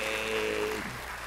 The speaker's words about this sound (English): Let's clap it up